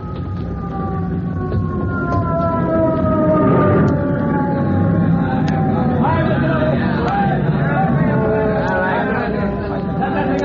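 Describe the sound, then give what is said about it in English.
A rescue company fire truck siren wails steadily with long gliding tones, loud throughout, over a busy background of crowd chatter and commotion as the truck arrives. “Say, here comes the rescue company.”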